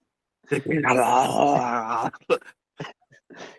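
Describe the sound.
A person imitates a dog's howl with one long, wavering, mournful wail lasting over a second, then several short breathy sounds and bursts of voice.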